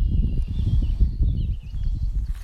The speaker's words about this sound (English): It's just my feet on the stone. The birds, me, the sound of my own feet.